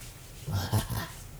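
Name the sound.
dog making noises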